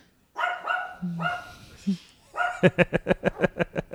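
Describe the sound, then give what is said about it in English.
A dog barks, a few separate yelps at first, then a rapid run of about eight sharp barks in quick rhythm toward the end, loud and clear. “So I will not throw a pillow at the dog because that would just be bad.”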